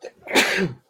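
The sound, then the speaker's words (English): A single sneeze bursts out: a quick intake of breath, then a loud, sharp, hissing blast that fades within a second. “Bless you.”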